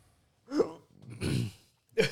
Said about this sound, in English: Jesus Christ. I got a hiccup, I got a cough, I got a burp from me, like. Like, okay. We got the trio going on.